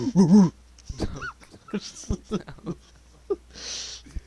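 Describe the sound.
A person's voice imitates a dog, opening with a loud, pitched whimpering whine, followed by quieter breathy yips, sniffs and a soft hissing exhale.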